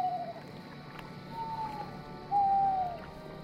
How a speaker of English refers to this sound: there was a log on the shore, and there were four owls on the log, with the one owl incessantly hooting at them. My uncle took it that they should go. The owl wanted them to leave.